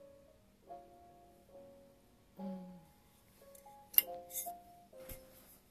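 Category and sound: household object, sipping a drink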